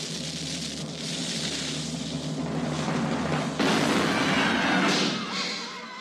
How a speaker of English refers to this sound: Do we need to debate? Yes, there's no reason to keep it in the cannon. Just get rid of this damn thing. Fire the cannon.